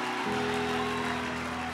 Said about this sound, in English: Somebody clap hands for Jesus.